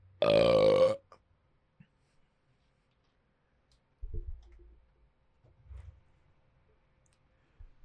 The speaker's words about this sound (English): So purple grape crush. I hope that works. It is the only kind of grape crush. Okay, so I don't drink pop ever. Does pop make you burp? Yeah. Okay. So let's chug some pop right now and then do our best burps. Okay, hold on.